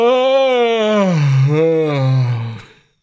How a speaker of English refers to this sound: Me having a yawn.